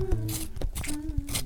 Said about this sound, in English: It's actually a pencil sharpener.